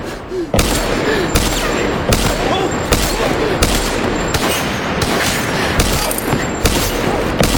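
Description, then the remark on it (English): A loud volley of gunshots fires in steady succession, about a dozen sharp blasts roughly every half second, each striking with a hard, cracking impact on the bulletproof glass of a car windshield. “he just fires the bullets into the glass until he uses the gun as though it were like a jackhammer against the windshield”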